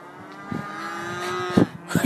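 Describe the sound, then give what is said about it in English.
A cow lets out a long, drawn-out moo with a steady low tone, with faint rustling and a couple of soft thumps from other livestock, as cows graze on grass outdoors; no one speaks. “They're singing a little song, look.”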